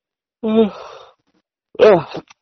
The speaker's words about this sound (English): Nah, just yawning.